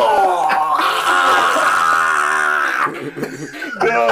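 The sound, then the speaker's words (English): A man lets out a long, loud, sustained scream, holding it for a couple of seconds before it breaks into shorter, strained vocal bursts. “Let me scream.”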